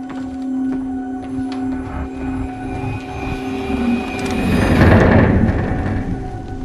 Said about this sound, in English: So it definitely sounds like a wooden creaking ship.